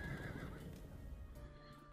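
A horse whinnies with a high, wavering neigh that trails off, accompanied by a low rumble and what sounds like faint hoof clopping underneath.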